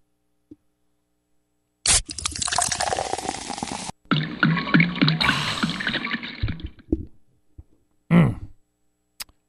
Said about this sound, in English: Hold on a second. Let me take a sip out of this 40. Hold on.